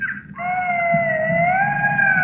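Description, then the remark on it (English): A single coyote howl, thin and high-pitched, holding one long steady note that rises slightly near the end, with a low rumble of background noise underneath and no voices. “It sounds smaller, thinner. It's coyote. 100% coyote. Higher pitched. It's a coyote.”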